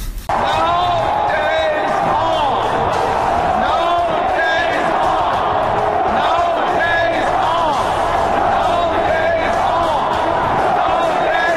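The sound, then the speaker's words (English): A large crowd at a celebration roars and chants "No days off" in unison, led by a man, with players beside him chanting along, many voices rising and falling in repeated swells over a constant wall of cheering that never lets up. “He wants this crowd to chant, "No days off." That's his style of celebration.”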